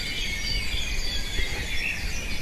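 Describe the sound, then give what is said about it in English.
A dense chorus of birdsong at dawn, heard on a dawn walk, with many overlapping chirps and trills blending into a steady high wash over a low outdoor rumble, with no voices. “who's a keen ornithologist that seems very good at picking out the various bird songs.”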